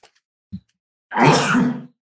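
sneeze

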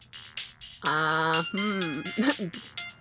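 phone ringtone ringing

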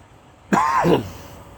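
cough

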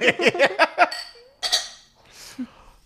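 glasses clinking

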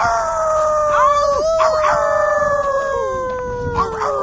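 dog howling

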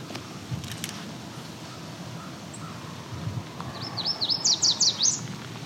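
yellow warbler song

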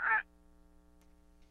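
parrot squawking

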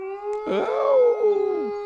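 wolf howl sound effect

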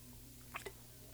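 sipping beer

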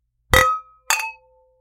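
wine glasses clinking

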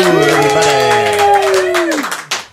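small group clapping

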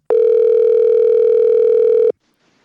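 telephone dial tone

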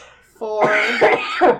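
cough and throat clearing

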